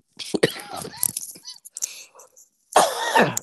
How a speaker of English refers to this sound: Now's the time to get something in while I'm coughing.